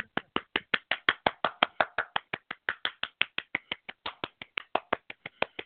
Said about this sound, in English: Live clapping.